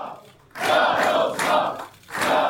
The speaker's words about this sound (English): There were chants of "We will win" in the crowd.